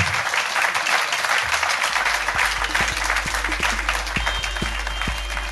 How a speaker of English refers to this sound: Ladies and gentlemen, please give a massive round of applause to the incredible Ben Shepherd.